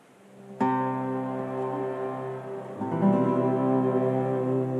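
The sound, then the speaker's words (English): A group of voices chants a long, steady Om on the single low note C, the sound swelling fuller partway through as more voices join and hold the tone. “Let's just Om a couple times on the C.”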